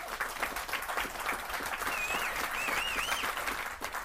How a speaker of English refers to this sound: I did not expect that applause.